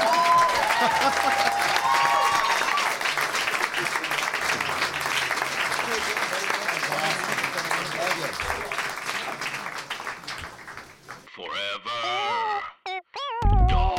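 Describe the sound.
An audience claps steadily in a dense, sustained wash of applause for about ten seconds, with faint cheering mixed in, before it thins out and a voice begins speaking.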